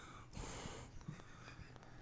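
A loud breath rushes into the microphone, a broad hissing exhale lasting about half a second, followed by quieter breathy noise and small clicks.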